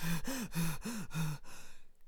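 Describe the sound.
A voice imitates an old dog lying at the side of the road, wheezing and panting: five quick, rhythmic breathy huffs with a rasping, voiced edge, fairly loud, trailing off into a fainter breath.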